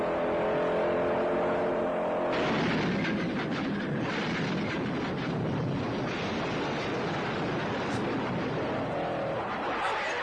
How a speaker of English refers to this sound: What is that sound called? It's a car crash. It was so long. Things. It was like a full scene from The French Connection.